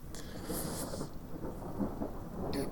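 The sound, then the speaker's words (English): Low thunder rumbles steadily through a storm, with rain hissing on top and a couple of brief bright crackles of rain noise; no one speaks. “Like, thunder scares him a little bit.”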